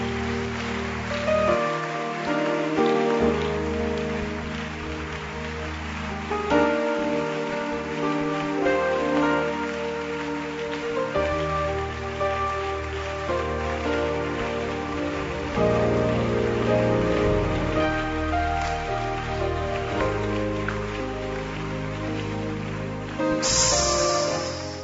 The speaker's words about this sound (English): Please go with them. Clap your hands for them. Keep clapping for them.